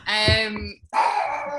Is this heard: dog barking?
yes